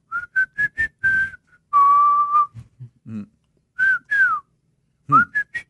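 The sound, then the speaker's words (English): A person whistles a short, jaunty tune in a house: a quick run of separate notes, one long held note, a brief pause with faint low murmuring, then more bright rising and falling phrases. “And I'm like, what are you whistling?”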